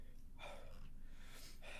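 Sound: heavy breathing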